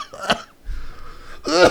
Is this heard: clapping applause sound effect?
no